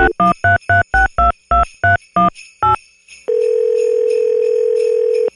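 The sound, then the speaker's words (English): A rapid series of about ten touch-tone keypad beeps dials the Santa Phone, a call to Santa's office at the North Pole. A steady, loud telephone ringing tone follows and holds to the end. No voices. “Dunner & Matt Call the Santa Phone”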